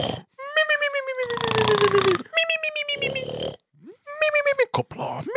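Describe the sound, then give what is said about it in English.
A voice imitates snoring, alternating drawn-out, gliding voiced tones with rough, raspy snorting breaths, repeated three times in a rhythmic cycle at moderate loudness. “And if he's snoring like...”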